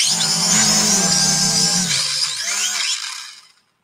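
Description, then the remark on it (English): A tiny drone flying inside a house, its propellers whirring with a loud, high-pitched electric buzz that holds steady, then wavers in pitch before spinning down and fading out. No one speaks. “So, you're definitely going to want to potentially invest in a tiny little drone.”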